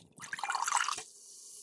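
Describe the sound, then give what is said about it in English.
A short burst of crackling, popping fizz from weakly carbonated sparkling water lasts under a second, then quickly dies away into a faint, steady hiss. No one speaks. “listen to this lack of carbonation”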